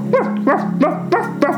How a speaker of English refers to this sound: Fred, the French bulldog, and Little Fred the puppy barked.